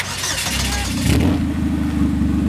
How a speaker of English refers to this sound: the Cobalt and Cole are ready to return to the track. Fire it up.